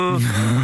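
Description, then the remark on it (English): A voice imitates a busker in Birmingham just breathing in and out through a mouth organ: a short, reedy wheezing tone like a single breath drawn through the instrument, fairly loud, lasting under a second. “And he'd have a mouth organ in his mouth and he'd just go...”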